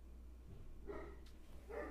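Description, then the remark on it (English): Two short barks from a pet dog, spaced about a second apart, sounding muffled over a steady low background hum. No one speaks. “Do you hear my dog barking?”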